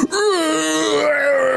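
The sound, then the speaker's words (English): A voice imitates a creature's horrible howling scream as acid sprays over its chest: one sustained, wavering wail with a strained, rasping edge, holding a steady loud pitch for over a second without any words. “As the acid sprays all over its chest, it lets out this horrible howling scream as it does so.”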